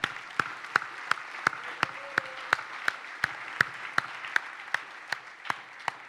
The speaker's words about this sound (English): The Bible talks about a clap offering.